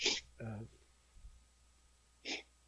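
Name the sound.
repeated sniffling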